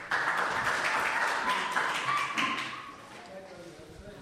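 A crowd claps in a steady, dense round of applause that holds for about three seconds, then thins and fades out.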